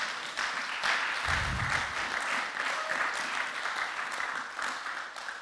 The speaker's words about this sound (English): They're running with purpose. Thank God. Come on, let's just clap for that.